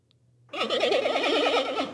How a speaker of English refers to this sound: All right, and this is what a panda really does.